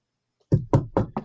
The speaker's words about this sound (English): Edit one of those out. I said I would knock, not three.